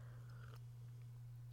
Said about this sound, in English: I'm going to take a sip of my tea here.